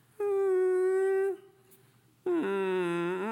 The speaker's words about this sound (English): So what do dogs do when they want to take part in something, when they want to go somewhere? Start to whine.